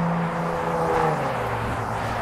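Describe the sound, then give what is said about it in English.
A steady wash of road traffic on an island, heard from a paved blacktop path about 10 feet wide, with cars rumbling past in a continuous, fairly loud drone and no clear gaps between vehicles. “Traffic would be a little lighter, but I'm not going to complain.”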